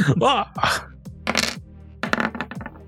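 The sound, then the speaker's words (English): Dice clatter across a hard tabletop in a quick series of sharp clicks and rattling bounces, fairly loud, with a brief pause before a final burst of tumbling taps. “Ooh, it was almost a 15 on the dice.”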